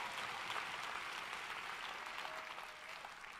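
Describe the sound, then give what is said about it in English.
A crowd claps and cheers steadily throughout, a dense, continuous wash of applause that holds at a fairly even loudness from start to finish, with no distinct voices standing out. “And look at them cheering.”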